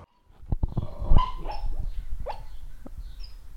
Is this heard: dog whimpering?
yes